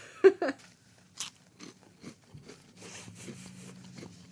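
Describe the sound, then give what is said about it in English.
Crisp crunching on a scallion cracker, a few sharp bites at first followed by steady, gritty chewing crunches, fairly loud with no talking. “it tastes to me like, oh, you know what it's kind of like? It's kind of like a chicken in a biscuit cracker.”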